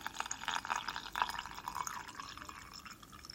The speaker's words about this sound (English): Alright, so I have some hot water and I'm just gonna pour that in.